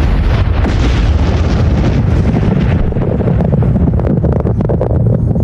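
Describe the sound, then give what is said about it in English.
A massive atomic bomb explosion's roar rumbles continuously, a loud, deep, turbulent blast of low-end noise that churns like violent wind for several seconds with no voices present. “I want to speak to soldiers who've experienced atomic bomb explosions up close.”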